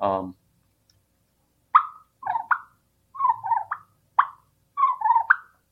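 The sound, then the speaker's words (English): A turkey purr made on a turkey call of latex and reeds, mimicking the contented sound turkeys make when congregated and feeding: short, fluttering, rolling mid-pitched notes in about five bursts with brief pauses between them, after a quick snippet of a voice at the start. “Other sounds that we just hinted to are like the purr, which can be very contented.”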